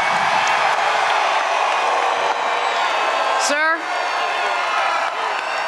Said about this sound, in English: Everybody, I think we all deserve to give this gentleman behind me, DJT, one hell of a round of applause.